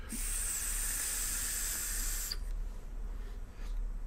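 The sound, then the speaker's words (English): A steady, airy hiss of breath drawn through a vape tank's airflow holes, with the tank set on single coil, a wide bore drip tip fitted and the airflow much tighter, runs for about two seconds, then cuts off sharply, leaving low background hum. No one speaks. “Airflow is much, much tighter, man.”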